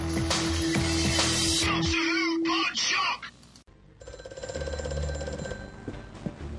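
A loud, rapid bell-like ringing, like an old telephone, rattles for about two seconds, then gives way to warbling electronic tones and a steady humming musical drone.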